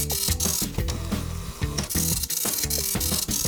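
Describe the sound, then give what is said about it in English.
A dot matrix printer prints loudly and continuously, its head rasping in rapid buzzing bursts with shifting whine-like tones and brief pauses as each line moves along. No voices. “Then there's the dot matrix printer.”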